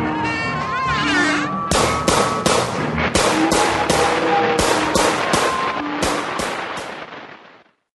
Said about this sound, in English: Oh man, I think that last gunshot just drew some attention.